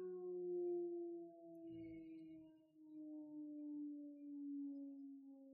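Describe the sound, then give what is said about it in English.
A town siren, sounded across the whole town every day at 6 o'clock when the grocery store closes, wails in one long, steady tone with strong overtones, its pitch drifting slowly downward over several seconds, with a brief low rumble partway through and no one talking. “I'm just waiting for this stupid siren that we have every day at 6 o'clock.”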